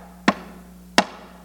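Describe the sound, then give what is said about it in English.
Two sharp knocks on a door, spaced about three-quarters of a second apart, each a crisp, loud rap over a quiet, steady low hum with no voices. “I'm standing at the door knocking.”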